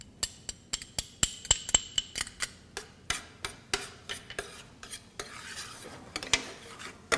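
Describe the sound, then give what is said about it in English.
A spoon scrapes and clinks against a pot in a quick, steady rhythm of sharp taps as shallots are stirred into beans cooking as a burrito component, with a faint sizzle underneath and no talking. “I need to add these shallots to my beans.”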